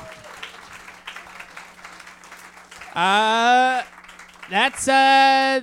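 An audience gives a round of applause for a bold prediction, a steady wash of clapping joined by two loud, sustained high-pitched whoops or cheers rising over it toward the end.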